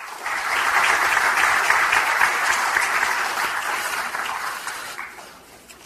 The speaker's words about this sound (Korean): 다음으로 우리 당 원내 사령탑 박홍근 원내대표의 인사 말씀이 있겠습니다. 큰 박수로 맞아주시기 바랍니다.